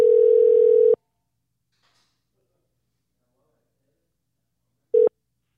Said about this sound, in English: Is he gonna go answer it? Got quiet. Can I hear it ring? I can hear it ringing.